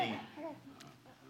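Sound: baby babbling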